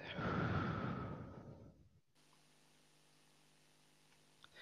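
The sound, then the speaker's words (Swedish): A long, deep breath out during a guided breathing exercise, a soft breathy whoosh lasting about two seconds that gradually fades, followed by quiet room tone. “Andas in och andas ut.”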